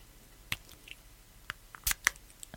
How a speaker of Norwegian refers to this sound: Nesespray! Nesespray. Så nå skal dere få lyden i live-versjon.